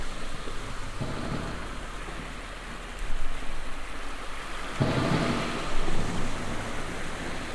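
Thunder crackles and rumbles through a steady rainstorm at a sandy, rocky seashore, with lightning in the clouds, a sharper burst near the start and another swelling roll midway, all over a constant hiss of rain and no voices.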